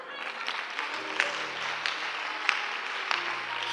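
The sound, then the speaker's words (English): An audience claps steadily throughout, a dense wash of hand claps with a few sharper individual claps popping out above the crowd, at moderate loudness and with no one speaking. “So you clap your hands.”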